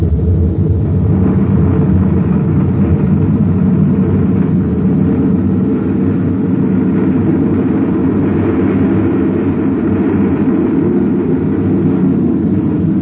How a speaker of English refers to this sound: All right, release magnetic holding field. Field out, sir. Now to fire rockets and get away from this uranium bombardment.